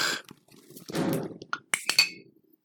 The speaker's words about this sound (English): I'm pouring myself some more wine because I need